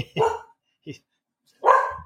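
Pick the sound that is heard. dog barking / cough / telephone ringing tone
dog barking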